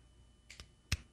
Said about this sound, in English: Marv's trying to clap along to what I imagine is a let's go, Draymond. But Marv's tiny hands don't make any noise. Oh. Marv, prove Roman wrong. Let me hear your hands clapping.